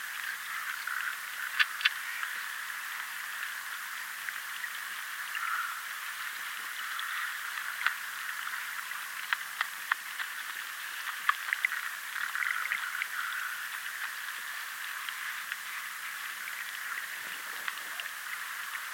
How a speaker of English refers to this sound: water rushing, glistening.